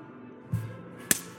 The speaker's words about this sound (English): So you slapped the shit out of him, didn't you? He didn't want to say anything. Backhand chop.